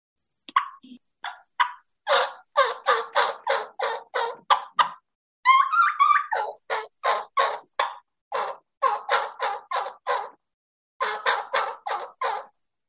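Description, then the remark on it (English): An imitated wild turkey kee-kee run, used as a spring locator call for turkey hunting: high whistled notes break into quick, rhythmic series of raspy yelps, repeated in several loud bursts with brief pauses and no talking. “I like to put some kikian in there in the spring because it's also a good locator call because they're not hearing a lot of it.”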